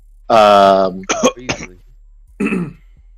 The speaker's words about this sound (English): I'm sorry, were you coughing because I was wrong?